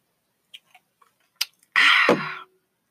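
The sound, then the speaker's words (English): A few soft mouth clicks, then a short, loud slurping sip of a drink lasting under a second, like someone drinking right into the microphone. No one speaks. “Sip break.”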